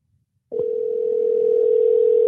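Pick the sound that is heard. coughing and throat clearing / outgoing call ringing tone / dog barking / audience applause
outgoing call ringing tone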